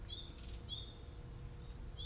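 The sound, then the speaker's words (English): A few thin, high bird chirps, short whistled notes spaced apart, sound faintly over a steady low outdoor rumble at 8:36 a.m. on a Sunday morning, with no one talking. “The birds are chirping.”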